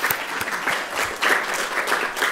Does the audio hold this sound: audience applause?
yes